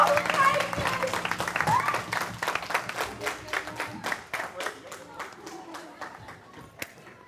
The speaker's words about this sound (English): On three, 3, 2, 1, let's go. Cheer them on, guys.